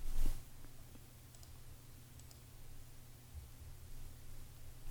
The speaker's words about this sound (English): Okay, click. I'm clicking. Clicking.